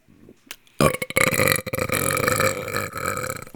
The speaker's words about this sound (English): It's these vapes, dude, that make me burp.